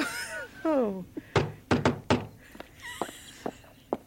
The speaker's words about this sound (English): Someone at the door.